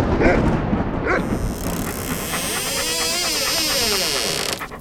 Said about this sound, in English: Oh, it's a dog.